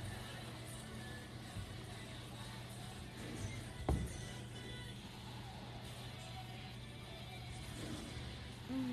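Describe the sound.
Race car engines roar in a steady, dense drone with a low hum, broken by one sharp knock near the middle; faint murmuring voices sit underneath.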